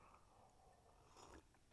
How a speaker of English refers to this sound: Coffee sip. Hey, I like that idea. I got a cup of coffee right here. I'm going to have a sip.